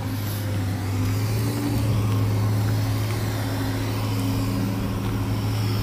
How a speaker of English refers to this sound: Tractor going. Gee, it's a backhoe is what it is. Much bigger than just a tractor.